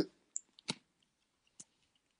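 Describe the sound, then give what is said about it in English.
A man coughs several times, short dry bursts spaced irregularly with quiet gaps between them, fairly soft, with no talking. “you can hear him coughing.”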